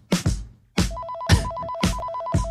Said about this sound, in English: What's that sound? What kind of phone makes that noise?